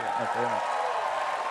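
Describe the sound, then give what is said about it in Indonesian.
Steady applause from a crowd, given to raise spirits just before a performance starts, fills the whole moment, a dense, even patter of many hands, with a voice briefly speaking over it at the start. “Kita kasih tepuk tangan dong biar semangat.”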